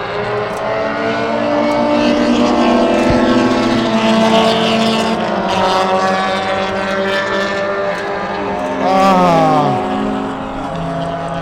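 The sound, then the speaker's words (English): Loud, continuous roar of race car engines on a track during a GLTC race, with revving and a sweeping pitch shift near the end as a car passes by; no talking. “That was the first GLTC race.”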